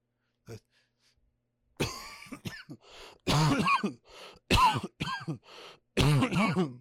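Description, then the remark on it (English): A harsh coughing fit from a person with COVID: a brief cough, then several loud, hacking bursts in quick succession with strained, raspy breaths between them, and no talking. “Cough just keep wrecking havoc on me.”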